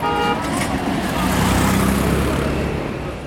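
Dense road traffic in India rumbles steadily with engines of cars and heavy trucks, a horn tooting near the start, and a low engine drone rising mid-clip; loud and continuous, no clear speech.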